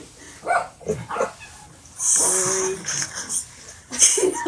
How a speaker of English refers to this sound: Oh, really, dogs? Hang on, guys. I'm waiting for them to stop.